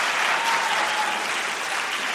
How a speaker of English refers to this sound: He's wisely letting the applause die down before he speaks.